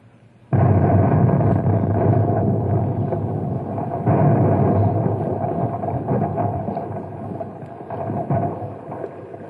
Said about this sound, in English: How'd you like to pull the wire and detonate the Compound C? Right, Bill. I'll count. One, two, three, fire!